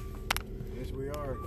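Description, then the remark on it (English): Steady low engine rumble fills the cabin of a moving car, with a couple of sharp clicks early on and a brief murmur of a voice partway through. “We're in the car, people.”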